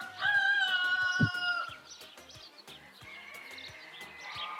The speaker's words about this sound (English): Yeah, we're just listening to chickens. I can't believe I'm listening to roosters.